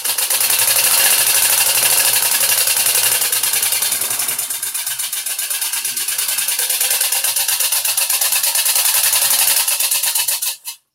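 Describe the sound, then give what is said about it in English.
A coffee grinder sound-effect instrument from 1917 buzzes in a loud, steady, rapidly rattling whir that mimics a T car engine, dipping slightly in level partway through, then swelling before cutting off abruptly. No one speaks. “So that is the coffee grinder.”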